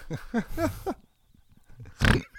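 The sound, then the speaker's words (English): Whale sounds: four short, moaning calls that bend up and down in pitch come in quick succession, followed by a quiet pause and then a brief, harsh noisy burst. “Do you like whale sounds?”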